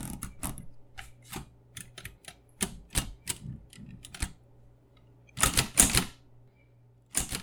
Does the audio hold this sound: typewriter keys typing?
yes